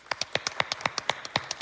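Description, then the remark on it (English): A small audience claps sparsely, about a dozen sharp, uneven hand claps scattered over under two seconds, with no one speaking. The audience members are clapping to show they have never bought a lottery ticket. “Clap if you've never bought a lottery ticket in your life.”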